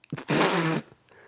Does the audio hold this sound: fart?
yes